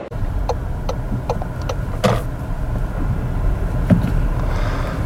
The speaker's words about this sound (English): Okay, I'm in my car and I'm driving back from EGX.